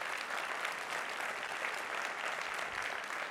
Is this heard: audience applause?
yes